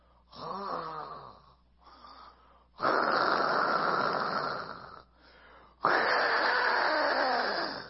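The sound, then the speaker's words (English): A voice imitates loud snoring, building from softer nasal snorts to long, harsh, rasping snores, with two big blasts separated by brief pauses. “And it got so loud, she's snoring in church, that they tried to turn up the PA and it would not go over her.”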